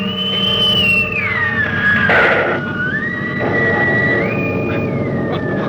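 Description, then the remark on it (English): A loud, steady whining drone of a plane's engine slides down in pitch as a rough burst of noise erupts partway through as the plane is blown out of the sky, then the drone rises and holds over a dense rumbling roar. No one speaks. “Barnhouse blew it right out of the sky.”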